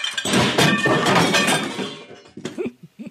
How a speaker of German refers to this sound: Geschirr, was runterfällt und kaputt geht. Richtig.